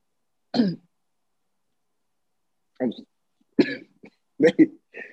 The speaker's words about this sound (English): Just cough if you need a cough, bro.